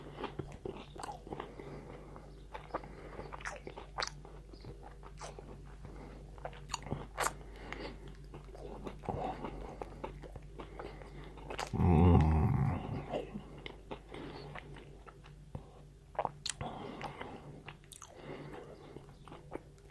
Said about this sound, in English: It's 5:42 in the morning. I'm drinking Coke and eating a lion bar.